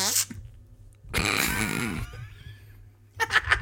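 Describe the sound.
A loud, buzzy fart sound effect blasts for about a second, trailing off into a fainter squeak, followed by thumping, clattering noise of a microphone being knocked over.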